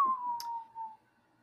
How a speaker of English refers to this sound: I don't know what that whistle was, but I liked it. It's just a mysterious wind. That's what I thought. Blowing in.